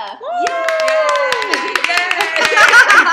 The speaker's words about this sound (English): Yay! Yay! Can I clap for myself? Yes, so, you can. Okay. Clap for yourself.